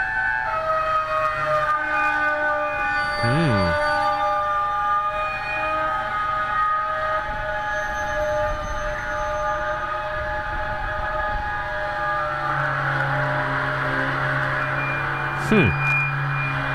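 train braking

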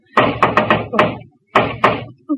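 knocking on a door

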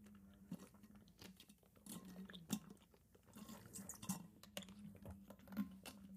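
sipping water

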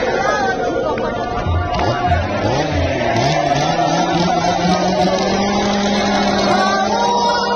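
chainsaw engine revving

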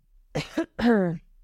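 cough

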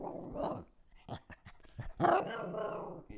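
dog growling and barking

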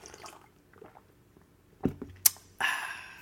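sipping coffee

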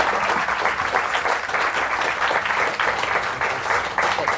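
audience round of applause

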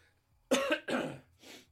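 coughing fit

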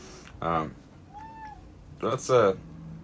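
cat meowing loudly

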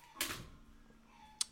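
door being closed

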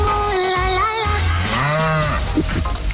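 cow mooing sound effect

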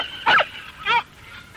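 dog barking

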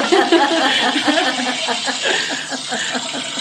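toilet flushing

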